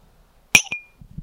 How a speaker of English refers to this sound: So I'll do a shot now to celebrate that. Of water. Yes. Cheers. Let's get the clink.